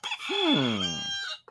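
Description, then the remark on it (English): A rooster crows once, loud, a single drawn-out call that rises sharply and then trails off over about a second, with no other sounds around it. “The rooster”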